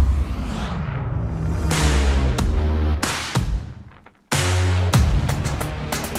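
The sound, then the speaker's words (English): A pickup truck's engine roars and revs hard, with rushing whooshes as it accelerates past, briefly fades, then surges back up, loud and throaty with no voices. “It's got phenomenal power, acceleration, good ground clearance, skid protection, and you've got the Multimatic GSSV shocks, so it's just going to be that much more of a fun truck.”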